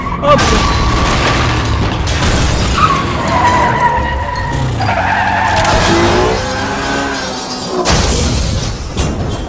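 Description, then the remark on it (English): A car roars as tires screech in long, wavering squeals, then loud crunching impacts and shattering hit, a violent crash that stays loud throughout. “Why do we always have such bad experiences in cars together?”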